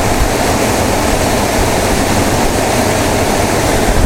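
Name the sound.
rushing waterfall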